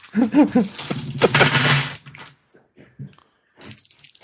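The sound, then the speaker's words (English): Dice, rolled for a brawl roll, clatter and rattle across a hard table, a dense burst of clicks for a couple of seconds, then a few scattered taps, with a brief voiced sound at the start. “I need to find my dice.”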